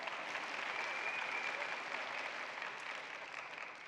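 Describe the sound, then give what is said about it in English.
Steady audience applause fills the whole stretch, a dense wash of many hands clapping at once, fairly loud and unbroken, easing off slightly toward the end. No one speaks over it. “Give yourself a hand.”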